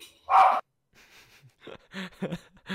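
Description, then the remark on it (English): A dog gives one sharp, loud bark, followed by a stretch of quieter, shorter vocal sounds and breathy noises. “Life of a dog owner.”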